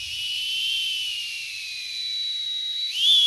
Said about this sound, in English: I asked some of my KUT coworkers to try doing the oscillating whistle